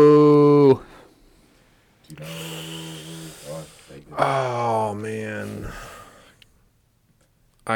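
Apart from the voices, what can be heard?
person yawning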